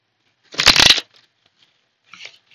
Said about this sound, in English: Then I'm going to do like a little fiver, and then I'll, jeez, my shuffling's just been off today.